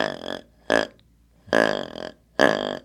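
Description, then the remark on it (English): Four short, deep, guttural grunts from a deer grunt tube, imitating a whitetail buck, demonstrated as a hunting call to attract white-tailed deer, sounding burp-like and fairly loud, spaced unevenly with brief silences between, with no talking. “And then the other thing that buck whitetail is doing at times is grunting, and this is what the grunt tube sounds like.”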